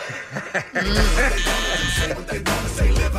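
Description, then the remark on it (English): A loud, harsh game show buzzer blares for a couple of seconds during a quiz on the greatest Halloween songs, a sustained raspy tone with strong low hum and bright overtones, starting after a brief moment of quieter sound. “Did you buzz it? I'm sorry, yes.”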